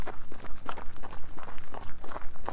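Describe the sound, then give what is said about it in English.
Steady running footsteps thud in a quick, even rhythm, roughly three strides per second, with light scuffs and a bit of background rumble, during a run at about mile six; no one speaks. “Well, this run's going fast.”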